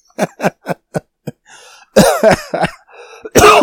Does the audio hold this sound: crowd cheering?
no